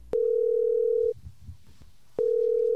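A telephone ringing tone sounds twice during a phone call, each steady electronic burst lasting about a second with a pause between. It is clear and fairly loud, with no voices.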